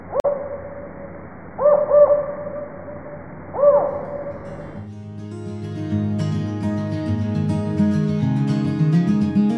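Several low, hollow owl hoots from a northern spotted owl (Strix occidentalis caurina), clear, a single call, then a quick pair, then another. After about five seconds, instrumental music takes over.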